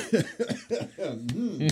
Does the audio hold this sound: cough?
yes